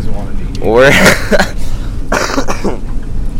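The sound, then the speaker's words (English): Two loud, close-up coughs land right on the microphone, the first harsher and rasping, the second shorter, over a steady low background rumble. “Cough straight into the microphone.”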